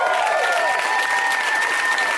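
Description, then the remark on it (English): Steady, dense applause from an audience fills the whole stretch, bright and even in loudness, with a thin whistle-like tone running through it and no talking. “Go ahead and clap for me.”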